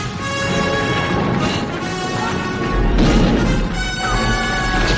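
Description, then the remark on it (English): A giant stone statue, moved by a man pushing against a wall, crashes through the wall in a dense, roaring burst of rubble and deep rumble, with sustained orchestral music playing loudly throughout. No one speaks. “Him pushing against that wall moves that giant stone statue, which crashes through.”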